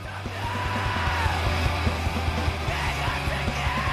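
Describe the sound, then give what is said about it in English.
A loud, dense emo post-hardcore song with steady pounding drums and thick distorted bass and guitars, while a raw, strained voice screams over the top. “But they were like an emo post-hardcore band. So definitely not quite the same type of like screaming”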